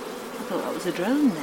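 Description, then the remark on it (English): A drone bee buzzes steadily for about a second and a half, its low droning hum wavering and gliding up and down in pitch, fairly loud with no talking over it. “I thought that was a drone then.”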